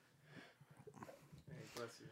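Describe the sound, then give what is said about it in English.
A single sharp sneeze bursts out amid people talking, a short, loud, breathy explosion of noise that stands out briefly over the voices. “Bless you.”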